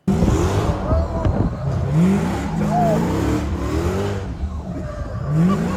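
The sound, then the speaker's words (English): A truck engine roars and revs hard in repeated rising and falling surges while tires spin and screech continuously, loud, through a sustained burnout. “Everything about this, like people that do this, that have trucks like this, that do burnouts like this, it's everyone in this video is hateable.”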